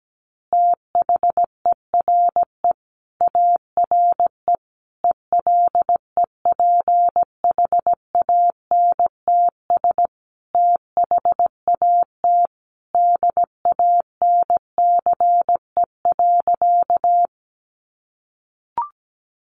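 A single steady mid-pitched tone keys on and off in quick dots and dashes, Morse code at about 17 words per minute, running alone with short gaps between words before stopping.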